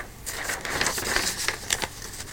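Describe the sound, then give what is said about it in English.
A paper page is turned, a short burst of dry crinkling and rustling with a few sharper crackles lasting about two seconds, with no voices. “Turning the page.”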